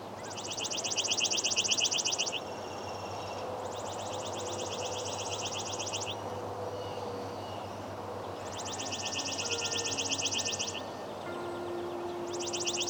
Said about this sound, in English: The song of the chipping sparrow is both easy and difficult to learn. While its simple trill can be heard in most places in North America at some point during the year, it isn't the only species that makes this kind of song.